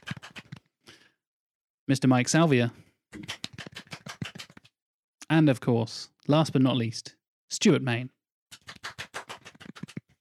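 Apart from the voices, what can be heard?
soft golf clap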